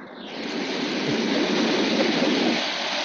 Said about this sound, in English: I was going to say, is that ocean waves? It kind of sounds like ocean waves.